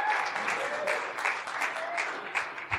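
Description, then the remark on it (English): A church audience bursts into steady applause with scattered cheers and whoops, cheering on a man in a tie who is invited up to give the first half of the sermon. A dense crackle of clapping holds fairly loud and even throughout, with no one speaking over it. “Can you just cheer him on for that?”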